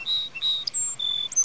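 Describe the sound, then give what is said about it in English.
A small bird chirps in a quick series of thin, high-pitched tweets and whistles, clear against a quiet, faintly noisy outdoor background in nature. “What a cute little bird.”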